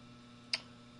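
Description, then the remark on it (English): A single crisp, bright tick from a countdown clock set to 6 minutes on a counter sounds once near the middle, fairly sharp, over a faint steady low hum. No one speaks. “I'm going to put 6 minutes up on the clock.”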